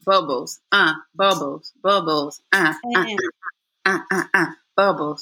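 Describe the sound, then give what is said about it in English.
A man's voice imitates bubbling with about a dozen short, throaty, gurgling bursts in a quick, uneven rhythm, loud, with brief gaps between them. “Bubbles. That was me doing.”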